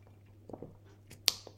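sipping tea

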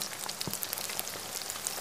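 rain falling

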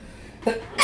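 sneeze

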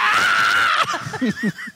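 person screaming

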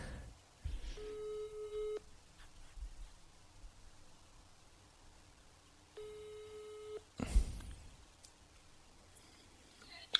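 telephone ringing tone

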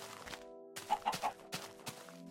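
chickens clucking

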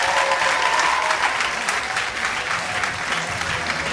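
audience applause

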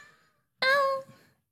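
cat meowing

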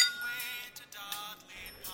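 beer glasses clinking

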